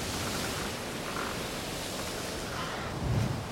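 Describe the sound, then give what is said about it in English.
A steady, dense roar of stormy wind and rain outside, hissing continuously at moderate volume, with a deeper gust swelling briefly near the end. No one speaks. “Whew, it's pretty nasty out there. Storm's picking up. Listen to that.”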